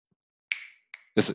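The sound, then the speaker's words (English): Two crisp finger snaps, a short pause between them, each a bright click with a brief ringing tail, followed by a louder, fuller burst of sound at the very end. “I don't know if y'all can hear that, but finger snap.”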